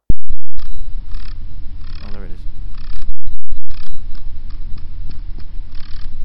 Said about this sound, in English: Sounds a bit like running your fingernail along a comb, doesn't it? That's as loud as I can really get it. That's you're listening to News Talk 1010, and if ever you wondered, that's the sound a male spider makes to get a girl horny.